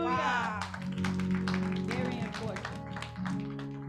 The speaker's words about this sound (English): Clap for the Lord Jesus.